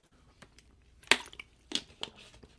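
A few sharp crinkling crackles of a plastic water bottle being handled and squeezed during a quick drink, with quiet pauses between the bursts and no talking.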